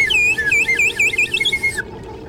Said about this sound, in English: An annoying thing. What's wrong with this slide whistle?